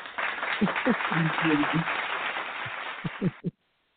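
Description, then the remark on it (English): A few seconds of steady clapping from a small group during a live on-air radio broadcast, loud, with voices calling out over it, then a couple of sharp final claps before it cuts off abruptly. “We got to throw some claps on it for that.”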